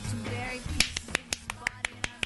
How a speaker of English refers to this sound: Let's do the clapping.